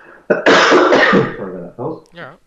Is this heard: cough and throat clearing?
yes